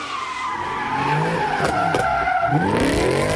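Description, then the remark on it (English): Tires squeal loudly and continuously as muscle cars spin donuts in the street right in front of City Hall in Philadelphia, engines roaring and pitch sweeping up and down, with sharp bursts of skidding and no voices. “Muscle cars doing donuts, a dangerous stunt.”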